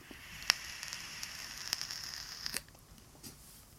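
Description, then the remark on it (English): Crackle of a vape coil during an inhale: a steady soft sizzling hiss dotted with sharp little pops, fading out after a few seconds, with no talking. “So there is a bit of a crackle to it.”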